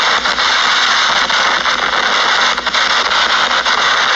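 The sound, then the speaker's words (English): A damaged car engine squeals loudly and continuously, a harsh high-pitched whine over dense roaring noise that holds steady throughout, unbroken, with no talking. “That car is damaged.”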